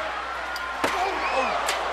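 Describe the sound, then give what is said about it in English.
A sharp, loud metallic smack rings out once as a steel chair hits a wrestler on the steel roof of the cell during a Hell in a Cell match, followed by a fainter second impact, over a steady roar of crowd noise and voices. “Oh, God, a chair shot just makes you sick, makes your blood curl.”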